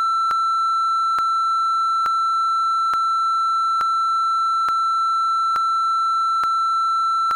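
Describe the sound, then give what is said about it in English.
A long, unbroken censor beep: a steady mid-pitched electronic tone that holds for several seconds, with faint regular ticks underneath and no voices. “That'll be a really long beep.”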